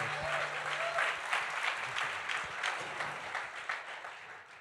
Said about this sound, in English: let's give him a big hand clap. Here we go.